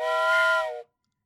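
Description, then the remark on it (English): A single loud whistle blast, steady and shrill with a rich, breathy tone, held for nearly a second before cutting off sharply into silence. No one speaks. “Otherwise, I'm blowing the goddamn whistle. Blow the whistle.”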